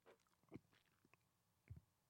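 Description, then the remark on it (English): Dry biscuits being chewed with no water, with irregular crunchy, crackling bites, two heavier crunches standing out among softer chomps, with no talking. “That's 16 other biscuits I got to get in on with no water.”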